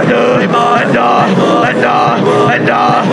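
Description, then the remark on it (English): An audience claps hands steadily and densely while many voices pray and call out together, forming a loud, continuous wash of sound. “As we clap and pray, anything Satan meant for the going down of this ministry, Lord, as we clap and pray, turn it for our good.”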